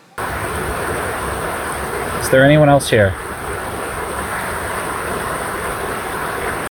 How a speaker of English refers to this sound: And for reference, this is what the unprocessed recording sounds like, so you can hear how loud the river is, right?